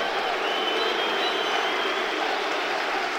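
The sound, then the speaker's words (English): An audience claps steadily for a man after he was booed, a dense, even wash of many hands that holds at the same fairly loud level for the whole stretch, with no voices rising above it. “Oh, they're clapping him.”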